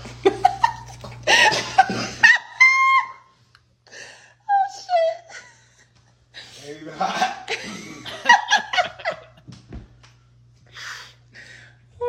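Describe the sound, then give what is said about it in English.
A few short, sharp hiccups break through amid laughing, gasping and voices, each one a quick high-pitched catch of breath. “You got the hiccups?”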